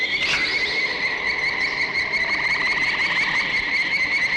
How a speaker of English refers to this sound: The sound effect is like a combination of like sped up and distorted bird sounds, frogs, whistles, all like kinds of weird, like chirping, like a chirping, hissing. Yeah, woodpeckers, like all mixed together and played at different speeds.